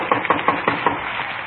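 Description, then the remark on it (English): Five evenly spaced knocks on the wooden front door of a small redwood house at 3113 Nordhoff Street in the San Fernando Valley. The knocks are quick and moderately loud, followed by a short quiet pause with no voices. “We parked the car and walked up onto the porch.”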